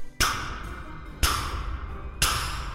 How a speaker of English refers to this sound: And just then I heard a knock at the front door.